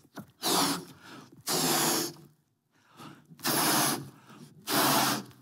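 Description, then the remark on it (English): A balloon is blown up with four long, forceful breaths into it, separated by short pauses for air. The airy whooshing is loud, with no talking. “You blow up the balloon.”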